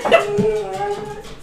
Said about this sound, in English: let your dog out.